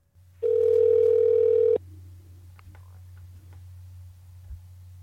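telephone ringing

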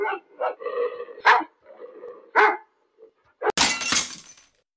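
pit bull dog barking

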